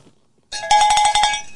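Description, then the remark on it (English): A cowbell is struck in a quick run of about six bright, metallic clanks with a ringing tone, played alone and fairly loud after a moment of near silence. “Billable Rick has offered up a cowbell for Steve in New York.”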